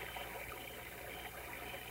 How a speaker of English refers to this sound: The way that water runs. From the top of the mountains to who knows where.